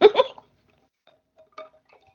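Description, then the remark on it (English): A couple of quick, throaty gulps as water is sipped from a glass, followed by quiet pauses and a faint, soft clink as the glass is set down. “Let me get a sip of water.”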